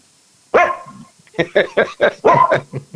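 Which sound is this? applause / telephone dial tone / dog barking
dog barking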